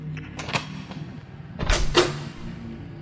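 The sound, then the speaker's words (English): A few sharp metallic clicks as a heavy metal key turns in a door lock, followed by a heavier clunk and rumble as the door swings open onto a small bare room, with no voices. “Holding it firmly, He walked to the door and sunk it into the keyhole.”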